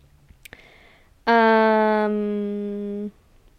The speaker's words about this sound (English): Do you guys hear that dog? Annoying, right?